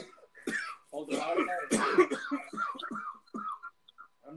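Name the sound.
coughing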